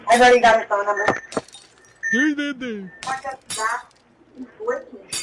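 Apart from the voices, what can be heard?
glass clinking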